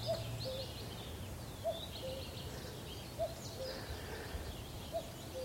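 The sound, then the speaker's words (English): A cuckoo calls four times on a cold morning, each a soft two-note 'cu-coo' dropping slightly in pitch, repeating at a steady rhythm over a constant hiss of wind on the moor. “Another cuckoo, same cuckoo.”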